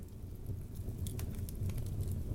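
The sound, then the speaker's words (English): A fire crackles steadily over a low, roaring rumble, with sharp scattered pops and snaps breaking through at irregular intervals. No voices are present. “I can hear those crackling flames, too.”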